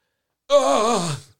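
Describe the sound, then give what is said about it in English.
A voice imitates the groan a man made when a barbed fishing hook caught in his thumb was broken out with pliers: one drawn-out, strained vocal moan lasting under a second, starting abruptly and sliding downward in pitch before fading, with no other talk. “Sounds like he was relieved or had pain.”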